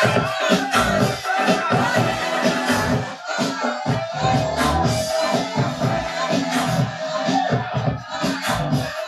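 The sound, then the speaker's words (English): An instrumental rap track plays loudly and continuously from a phone connected to a speaker, with a dense full mix over a punchy, steady beat that pulses throughout, without pauses. “And it's a rap song.”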